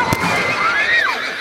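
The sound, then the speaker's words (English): A horse whinnies as the horses are reined in, with a high, wavering cry that rises then falls away over about a second, heard clearly against a busy background, with a brief sharp crack at the start. “"Oh, only boys going hunting," he says while reining in the horses.”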